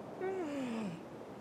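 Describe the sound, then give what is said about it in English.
A single drawn-out yawn from Super Grover, its pitch sliding steadily downward over nearly a second before trailing off into quiet breath, with no other sounds around it. “Super Grover yawns.”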